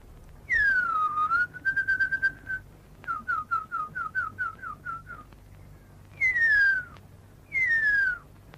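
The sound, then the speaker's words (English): A Maori tracker whistles the call of the huia, an extinct New Zealand bird: long descending glides, then a run of quick rising chirps, then two more falling slides, clear with no talking. “This is a Maori tracker whistling the call of the huia, a New Zealand bird that went extinct from overhunting and habitat loss in the 20th century.”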